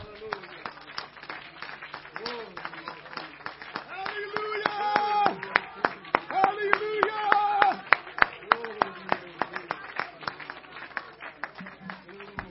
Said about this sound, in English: Come on, let's clap our hands one more time.